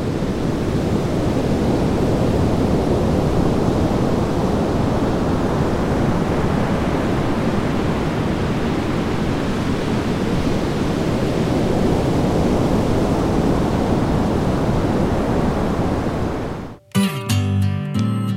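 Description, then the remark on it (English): Ocean surf at Melbourne, recorded as separate tracks about 50, 100 and 150 yards away and layered into one dense, steady roar, loud and continuous for about seventeen seconds with no distinct breaks, before it cuts off into a brief musical tone. “Melbourne Surf Mix”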